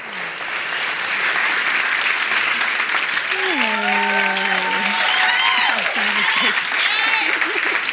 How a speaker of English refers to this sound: Can y'all just start clapping and letting her know how much we love her and how glad we are that she's here?